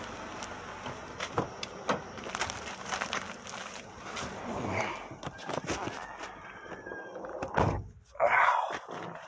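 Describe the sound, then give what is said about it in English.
A door without a spring being pushed open with the toe of a foot by someone leaving, with a few knocks and thunks over a steady background hiss and faint indistinct voices, ending in a louder clunk. “So I go to push open the door as I'm leaving, and the fucking door didn't have a spring on it or anything.”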